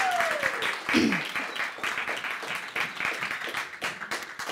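A round of applause from a group, dense, steady clapping that fills the whole stretch at a fairly even loudness, with a brief falling whistle-like cry near the start.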